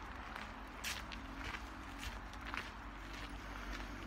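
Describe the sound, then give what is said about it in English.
Footsteps crunching along a trail through trees at a steady walking pace, each step a soft, gritty crackle roughly every half second over a low, constant rumble. “I can talk to myself for an hour while walking through their beauty and listening to the crunch of the trail on my feet.”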